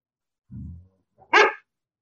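A dog lets out a low, rumbling growl, then a single loud, sharp bark a moment later, with silence around both sounds.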